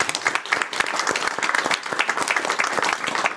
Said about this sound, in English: and a good applause for her.